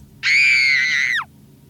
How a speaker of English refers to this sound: But there's a big difference between the scream of a 10-year-old child and a grown-ass woman. Here's a couple examples. Scream of a child.